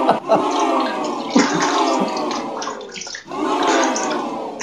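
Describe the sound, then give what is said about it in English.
A man urinating into a toilet, a steady, loud splashing stream of liquid hitting water that runs without a break, swelling in brief surges every second or two. “Nobody needs to hear an 8-foot giant having boys, a pee.”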